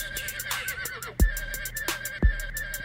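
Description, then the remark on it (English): A high, wavering horse-like whinny, a vocal imitation used as a rapper's tagline in a new song, rises over a driving music track, with rapid rhythmic clicks and two deep bass thumps punctuating the beat; no one speaks. “Bitch, I'm a horse.”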